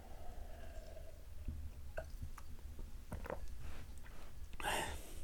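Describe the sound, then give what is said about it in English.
Quiet mouth sounds of someone sipping water from a glass: soft wet smacks and small clicks, then a brief louder slurp and gulp near the end, with no talking. “Gonna have another sip of the drink. We have moved off the bottle to the glass of water.”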